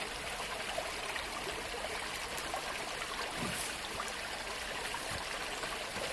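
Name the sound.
small waterfall trickling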